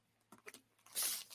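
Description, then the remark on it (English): Arsenal scissors slice open plastic packaging: a few soft crinkly clicks, then a brief bright hissing cut through the plastic, fairly quiet, with no one talking. “Grab our Arsenal scissors here. Find an insertion point to start slicing.”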